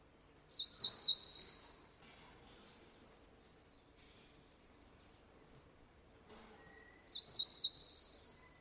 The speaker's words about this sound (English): Northern parula? Almost. Cerulean warbler? Yes, that's okay.